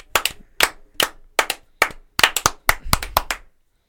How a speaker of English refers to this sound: Clap with me. 1, 2, 3.